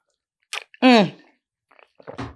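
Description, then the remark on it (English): A quick slurping sip of a drink, followed by a drawn-out satisfied vocal sigh, then a few soft mouth and swallowing noises. “I'm going to take a sip of my drink first.”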